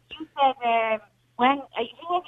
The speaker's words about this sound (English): Say it again, your phone is breaking up a little bit